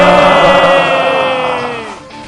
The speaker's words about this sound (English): but the crowd goes wild.